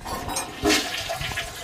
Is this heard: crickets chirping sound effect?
no